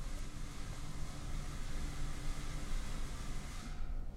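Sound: rain sound effect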